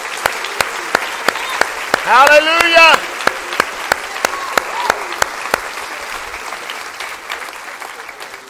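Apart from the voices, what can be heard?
audience clapping hands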